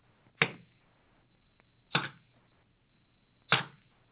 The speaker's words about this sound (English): Take the arrows. Yes. Now, strike the arrows on the floor.